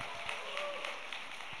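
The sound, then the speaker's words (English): A church audience applauds the pastor's wife as the couple celebrates ten years of marriage, a dense wash of many hands clapping at once, steady throughout the short stretch, with faint voices mixed into the crowd noise. “So you can feel free to clap for her for putting up with me for a decade now.”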